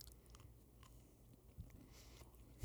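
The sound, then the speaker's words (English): Quiet chewing of a lemon cookie, with soft crunches and wet mouth sounds in an irregular rhythm, ending on a louder bite. No one speaks. “This lemon cookie is kind of good.”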